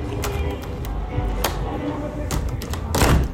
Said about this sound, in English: Oh, the door doesn't open all the way. Nope. It is locked, so you do not jump. But I can open it for air.